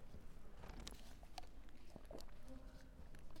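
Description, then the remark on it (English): Quiet handling sounds: a few sharp crackles and clicks as a person twists open the plastic cap of a water bottle, then soft sipping and a swallow, with faint background noise underneath. “While they're doing that, I'm going to open my water and take a sip.”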